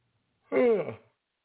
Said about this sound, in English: I know that yawn is probably going to spread throughout the world like cancer.